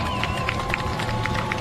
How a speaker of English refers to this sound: And, of course, the PA announcer here getting the crowd fired up, asking if we're ready for some football. And I think there's a resounding yes all over Rutherford County as really fans on both sides begin to stand and cheer.